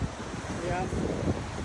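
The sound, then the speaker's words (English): Steady outdoor ocean ambience with a broad rush of surf and gusting wind buffeting the microphone, continuous, with no distinct voices. “Now we're back. We're back. Back to the ocean.”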